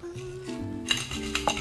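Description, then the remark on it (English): Ice clinks against glass as drinks of blueberry vodka and light lemonade are refilled: a few sharp, bright taps, with two quick clinks near the end, over a steady, humming tonal background. No one speaks. “Alright, you guys, we're doing a refill real quick.”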